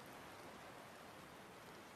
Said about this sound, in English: From here, you notice that the rain slowly begins to become not only heavier, but you begin to hear the sounds of thunder.